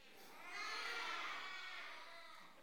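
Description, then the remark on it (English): A group of children scream out together, responding when asked to say an emotion out loud, in one loud, high-pitched burst that swells quickly and holds for about two seconds before tapering off. “That sounded more like a scream of, okay, did I hear it? Anger, okay?”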